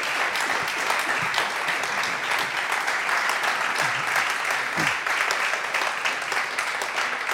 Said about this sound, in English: Let's give him a warm round of applause, shall we? Very good.